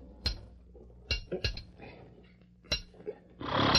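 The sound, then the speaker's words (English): Sharp metallic hammer strikes ring out, about five blows at an uneven pace, as a couple of nails are driven into the loose shoe of a colt named Victor by a forge, ending in a brief burst of raspy noise. “Your horse's shoe needs a couple of nails. Bring me that hammer over there by the forge.”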